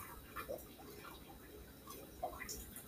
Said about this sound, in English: That's right, bubbly. No, that's not me urinating. That is our water filter.